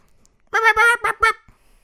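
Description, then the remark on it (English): A person's voice imitates a kiwi bird call: four quick, shrill, honking cries in a rapid burst, fairly loud, with silence before and after. “What if that were the kiwi call? It is the kiwi call.”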